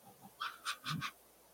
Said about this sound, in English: I hear a dog. I hear a dog.